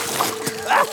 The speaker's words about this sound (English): As Flynn showed off his different wheels, he was suddenly blasted with water.